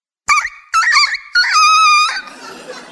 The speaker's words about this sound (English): You needed a cock crow about now.